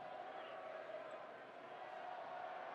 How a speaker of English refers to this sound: Now the Warrior fans chanting Warriors, coming largely from the upper bowl.